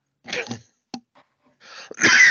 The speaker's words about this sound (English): Just as I cough.